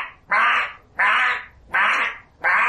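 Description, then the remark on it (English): Black swans give four loud, harsh barking calls in a steady rhythm, each raspy honk lasting about half a second, as they are pulled slowly in circles into a whirlpool, with the faint rushing whirlpool noise filling the short gaps between them. “Secondly, there are a bunch of black swans in there that are being sort of pulled slowly and inexorably into the whirlpool, and what you can hear is a sort of noise of the whirlpool, and then the harsh barking of swans at the top.”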